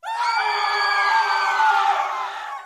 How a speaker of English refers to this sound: Did that get your attention? I thought it might. Screams are one of the most fundamental of human noises, something we're all programmed to do right from the second we're born, no matter what culture we're part of.